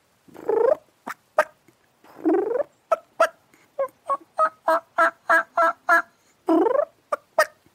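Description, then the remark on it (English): Soft turkey calling made by a person on a diaphragm mouth call: drawn-out purring yelps, sharp clucks, then a steady run of evenly spaced yelps, clear with no talking. “Most people can't call that good with a diaphragm.”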